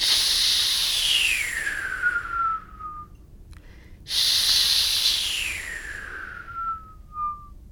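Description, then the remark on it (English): Two long, forceful breathy hisses, a drawn-out H sound made by mouth and intensified as a way of learning to whistle, each gliding downward in pitch until it thins into a whistle-like tone, separated by a brief pause. “And what you want to do is to intensify the hiss noise that you get from the H.”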